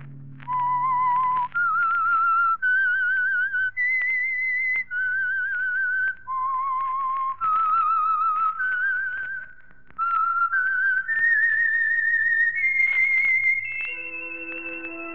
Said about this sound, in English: Let that whistle be your signal for the Signal Oil program, The Whistler, each Sunday night at this time